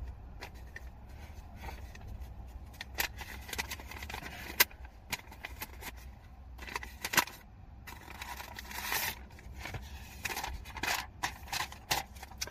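Paper sounds of a letter envelope being torn open and handled, with irregular crinkling and ripping bursts and a couple of sharp little clinks of coins shifting inside.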